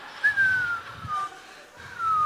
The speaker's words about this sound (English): He's been reading it and like maybe whistling. But nothing is coming.